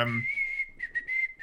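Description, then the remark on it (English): A person whistles the Back to the Future film theme tune: a steady, clear held tone that then breaks into a few short rising and falling notes, moderately loud. “What are you whistling? I was attempting to whistle Back to the Future.”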